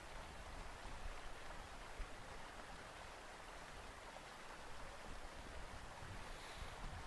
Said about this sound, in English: I'm just going to sit here and listen to the waterfall for a little while longer before I leave.